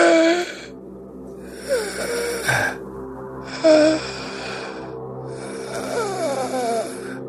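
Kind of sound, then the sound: vocal imitation, imitated labored gasping breaths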